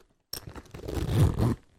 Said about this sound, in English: I got a zipper.